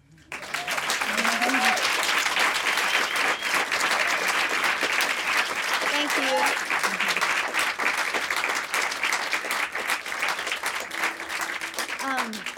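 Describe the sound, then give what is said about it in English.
Sustained audience applause after a song, partly for the singer's guitarist, a dense wash of clapping holding steady for about twelve seconds, with a few brief cheers and voices rising through it. “And also another round of applause for my beautiful, beautiful guitarist”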